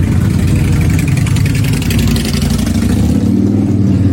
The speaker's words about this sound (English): That's not my car. That's a little bit of a bike going by.